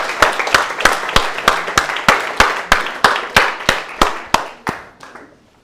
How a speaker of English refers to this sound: Give a round of applause for these young boys.